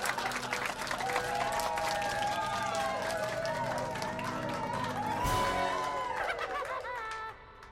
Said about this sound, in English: All around you, framed in the mirrors, the crowd applauds.